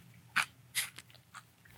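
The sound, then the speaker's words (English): Crunching as someone bites into dried fishing bait, a fish food with eyeballs: two sharp, loud crunches followed by a few softer, crackly chews, with no talking. “Make sure to crunch on those eyeballs.”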